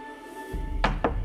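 Three quick, hard, frantic knocks on a green door in rapid succession, fairly loud, with no voices and only a faint steady hum in the background.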